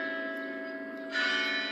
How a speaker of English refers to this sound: By the time the boys caught up to Roach on the front porch, she had already pushed the doorbell. It rang through the house like spooky old church bells.